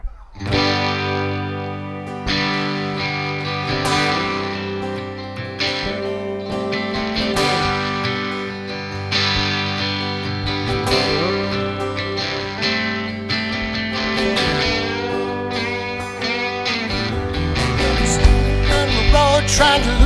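A live band plays a song at a steady, full volume, with bright effects-laden electric guitar over bass and drums, swelling a little louder toward the end.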